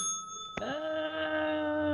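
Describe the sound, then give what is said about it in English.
A single bright bell strike rings out sharply, then sustains with a clear shimmering tone that hangs and slowly fades, fairly loud with no talking. “Maybe that was one too many bell rings.”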